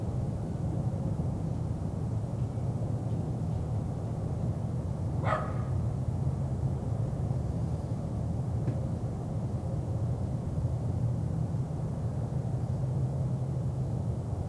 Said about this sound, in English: And there's a dog out there barking at absolutely nothing. Bark at that thin air, dog. Bark at that thin air. I'm inside, the mics are outside, we don't have any rain at the moment.